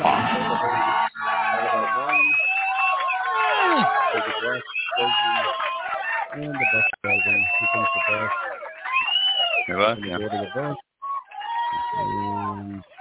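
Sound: crowd cheering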